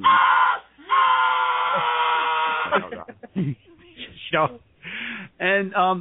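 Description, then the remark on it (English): A voice imitates a woman's harsh, raspy growling noise in two long, strained bursts, then trails into short choppy gasps and broken vocal noises. “you were with some lady and you were doing something with her, and she let out this growling noise.”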